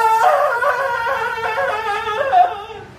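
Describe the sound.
A person lets out a loud, sustained Tarzan-style jungle yell while beating the chest, a high warbling cry whose pitch wavers up and down for about three seconds before fading slightly at the end.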